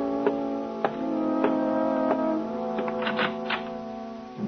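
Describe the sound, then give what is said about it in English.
A kitchen clock ticks in a steady, even rhythm, roughly one tick every half second, crisp, over a sustained low humming tone with no voices. “Glance at the kitchen clock. And it's time.”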